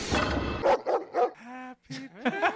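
A dog barks several times in quick succession, loudly, then lets out a drawn-out whining yowl with harmonic pitch slides before a few more sharp barks.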